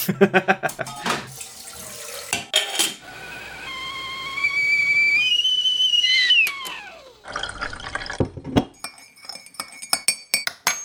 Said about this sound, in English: Let's have a quick breather. Let's put the kettle on and then we'll get back into more unpopular stuff.